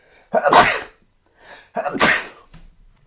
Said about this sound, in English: I think I'm going to sneeze soon.